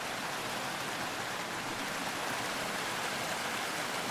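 Steady rushing water flows without pause, a dense, even hiss like a stream or small cascade, continuous throughout, with no voices.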